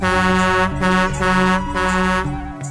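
A Nepali truck horn honks in a run of loud, sustained, buzzy blasts that shift slightly in pitch from one to the next, with brief breaks between them and no voices.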